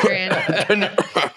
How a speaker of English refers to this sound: Oh, there goes my cough again. My cough again.